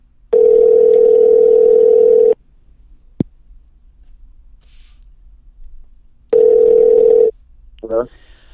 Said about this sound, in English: Let's ring him up.